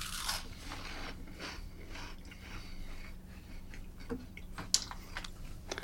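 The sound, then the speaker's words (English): Crisp crunching of someone biting and chewing a crunchy snack topped with onion, cabbage and prawn, with a steady run of sharp crackles over a low background hum and no talking. “I think I got a prawn there. I thought it was a chili, but that's a prawn. Alright, I'm moving away for a crunch.”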